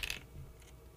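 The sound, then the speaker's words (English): Dice clatter in a quick burst at the start, followed by a couple of faint clicks as they settle. Quiet, with no talking. The dice are rolled for a player's turn in a game. “Well, he gotta roll the dice first.”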